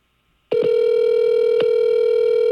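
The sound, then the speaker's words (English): A telephone keypad tone as a caller presses 0 for the operator on the phone menu of radio station 103.9 The Fox in Flint, Michigan, sounds loudly after half a second of quiet and holds steady at one pitch, with a couple of faint clicks. No one speaks. “I press 0.”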